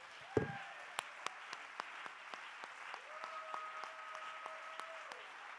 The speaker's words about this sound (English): Oh, let's clap our hands and give him real praise.